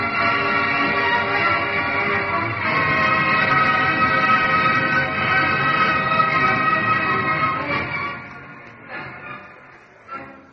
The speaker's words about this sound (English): Prison break! Sound the alarm!